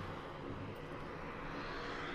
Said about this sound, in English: there's a float plane just coming in here, just landed right off the side of the ship.